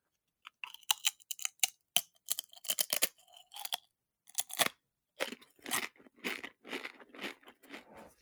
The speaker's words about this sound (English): That was a good crunch. That was a heavy crisp. That's got to be Lay's or Dorito.